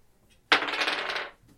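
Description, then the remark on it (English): Dice clatter and tumble across a hard table in one sharp roll, rattling briefly for under a second before settling, rolled for traps in a tabletop game. No voices are heard. “these dice do not normally perform as poorly as they do when I play Goblins of Conquest. I think we need to swap dice”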